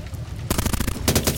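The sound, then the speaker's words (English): A low rumble gives way to a loud, rapid burst of gunfire peppering a wall, a quick volley of sharp cracks that briefly pauses and then resumes. No one speaks. “The gunfire peppered the wall behind Mal and he hit the ground, spreading himself flat.”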